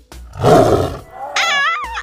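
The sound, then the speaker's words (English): A Bengal tiger's deep, rumbling roar swells loudly, then breaks into a higher, rising snarl before cutting off. No one speaks. “Actually, you are now the proud owner of a Bengal tiger.”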